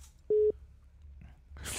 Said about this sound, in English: Okay, sometimes this phone line gets fucked up.